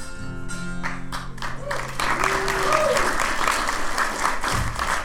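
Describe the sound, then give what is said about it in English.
A held sung note fades out and an audience breaks into steady, fairly loud applause, dense clapping that continues for several seconds with a few voices mixed in. “No sympathy applause.”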